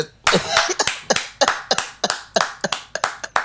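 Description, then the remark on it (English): A short round of applause: about a dozen sharp, crisp claps in an uneven rhythm, fairly loud, with no talking over them. “This woman needs a round of applause.”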